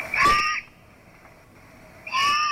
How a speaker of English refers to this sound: Horned owlets beg for food with piercing screams, and adults may scream as well when defending their nests.